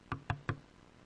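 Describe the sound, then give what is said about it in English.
Three quick, evenly spaced firm knocks on a wooden door, followed by quiet. “Sometimes when you knock on a door, we just don't hit the door once. Usually it's three times or so.”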